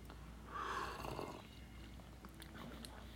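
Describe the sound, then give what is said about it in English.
An airy slurp of someone taking the first sip of hot coffee, lasting under a second, followed by faint clicks and a low steady background hum. “First sip. Let's do it.”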